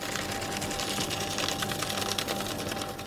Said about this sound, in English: That's a paper shredder, right? Yes. Yes, it is. And it's got 5G straight to China.